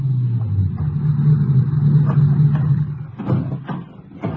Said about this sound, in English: Barely got him unloaded when another ranger car pulled in.